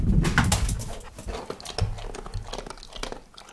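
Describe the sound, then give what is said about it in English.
A dog, Abby, eating a snack: wet smacking, crunchy chewing clicks and short snuffling grunts in an uneven, busy rhythm, with no one talking. “Is my pooch hungry? Would she like a snack?”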